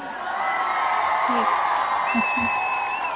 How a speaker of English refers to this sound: And let me just give you my customary round of applause right here.